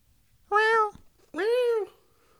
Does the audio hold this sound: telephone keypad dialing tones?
no